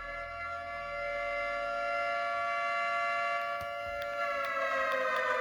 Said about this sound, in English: Sorry, John, for not having the pooper gate siren ready.